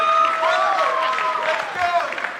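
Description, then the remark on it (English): An audience claps and cheers together to vote on which of two men was cooler, a steady, loud wash of applause mixed with rising and falling shouts from the crowd, lasting a couple of seconds without a pause. “We've clapping if this guy was cooler this morning.”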